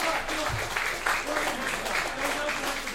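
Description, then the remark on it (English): An audience claps steadily throughout for a man brought up on stage, a dense crackle of many hands with a few brief louder bursts, and faint voices mixed in beneath the applause. “Big round of applause!”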